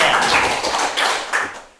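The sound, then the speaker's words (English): Hands clap several times in a quick, uneven run of sharp, bright smacks that fade off at the end, with no voices over them. “And that's appropriate to clap.”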